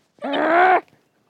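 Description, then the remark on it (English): A single wolf vocalization, a short, throaty growling groan with a steady, fairly low voiced pitch, lasting just over half a second and heard on its own without any talking. “Some wolf that looked just like you that was back-talking me there.”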